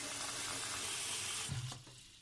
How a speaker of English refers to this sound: I don't have an ocean, but I do have a really big pot I can fill up.